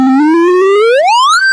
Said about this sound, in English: Here, I'll slide the slider up. Yep, now the slider's up, and you're hearing the kind of reverb and the high-pass filter. Here it comes, and you can make it resonant